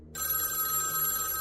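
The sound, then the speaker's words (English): A telephone bell rings continuously, a steady metallic trill with bright sustained tones, fairly loud, starting abruptly after a brief moment of quiet with no one talking. “The phone's ringing.”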